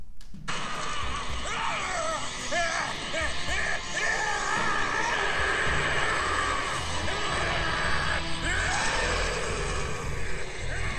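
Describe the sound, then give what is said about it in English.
A loud, sustained giant ape monster scream from an anime, a fan edit from YouTube, with shrieking, wavering tones over a dense wall of rumbling noise, continuing without pause for the full length and no speech. “For those who didn't hear the sound, I'll play a different clip so you can try to hear the scream.”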